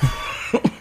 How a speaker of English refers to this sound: Got one more sneeze out of it.